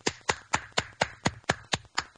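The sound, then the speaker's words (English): A brief round of applause: about nine sharp, evenly spaced hand claps in a quick steady rhythm, fairly loud, with no talking. “Now, that deserves a round of applause just in my part, because I'm taking credit.”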